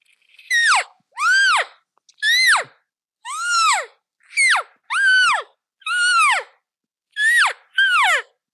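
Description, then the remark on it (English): Nine short, nasal mewing calls imitating a cow elk, made on a turkey mouth call. Each rises briefly then slides down in pitch, repeated in a steady, evenly spaced series with no talking. “And then, for example, like with elk, you know, there's a lot of people that use mouth calls for elk. So when you practice a lot, so for example, a cow elk.”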